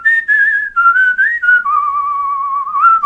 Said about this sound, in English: How do you vibrato your whistle? That is a whole nother level of... Oh, my. That's good. That's really beautiful.